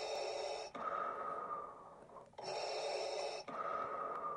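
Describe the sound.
Loud heavy breathing, likely a person performing it: two full in-and-out cycles of harsh, airy rushes, with no talking.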